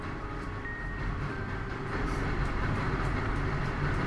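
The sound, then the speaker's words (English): A train rumbles past, a steady heavy roar of wheels on track that swells louder halfway through, with faint metallic squeals riding on top. No voices. “You never notice how many trains pass by until you need to record an interview with yourself.”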